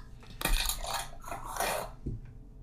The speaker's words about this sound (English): Cause ain't no reason for you to be biting into that's not how you should sound trying to, or your plate shouldn't sound like you scrap boxing trying to cut through this goddamn steak. I shouldn't hear clink, clink, clink, clink, clink, clink, clink.